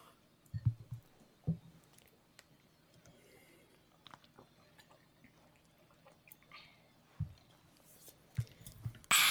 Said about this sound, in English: Well, that was refreshing. So refreshed. We hope everyone took a sip of water while listening to us take a sip of water.